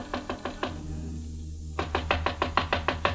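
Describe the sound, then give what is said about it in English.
Two bursts of rapid knocking on the door of Jan Svensson's hotel room, Room 6 on the first floor of the Hotel Malau, with a light on inside. Each burst is a quick series of sharp raps, separated by a short pause of quiet with a low background hum, no voices. “There was a light on inside the room, and I knocked on Jan Svensson's door.”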